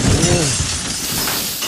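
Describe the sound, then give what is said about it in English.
Glass shatters loudly, a burst of crashing, tinkling shards that fills the short moment, with a brief voice-like murmur underneath at the start. “Well, break that glass ceiling.”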